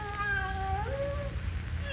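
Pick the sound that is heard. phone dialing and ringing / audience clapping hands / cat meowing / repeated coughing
cat meowing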